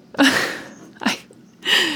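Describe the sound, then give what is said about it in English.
Three quick, high-pitched puppy yips and whimpers, fairly loud, the last one trailing off into a thin whine. No talking. “So maybe a baby dog could fix this.”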